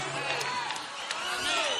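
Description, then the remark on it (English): An audience at a church service bursts into steady, dense applause for Jesus mixed with cheering voices, a continuous loud wash of clapping and shouts throughout. “Give Jesus a hand clap.”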